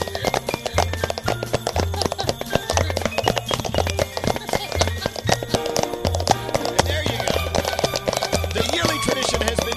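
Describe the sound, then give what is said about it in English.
Rapid, steady clip-clopping made by cups knocked together to mimic galloping horse hooves, loud, layered over driving music with a thumping bass line and some voices. “So your thoughts of our yearly tradition with the cups and the horses.”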